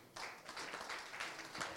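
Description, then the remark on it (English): An audience breaks into applause for the worship team, many hands clapping together in a dense, steady patter that starts abruptly and carries on evenly at moderate volume. “Round of applause to the...”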